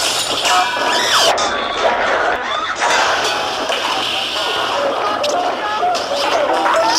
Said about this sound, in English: Need the sound of a man falling down the stairs in a Hanna-Barbera cartoon?